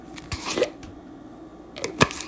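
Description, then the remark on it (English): A voice imitates a pickle jar lid popping open: a few soft mouth clicks and rustles, a pause, then one sharp, brief pop near the end. No talking. “And you open the jar of pickles.”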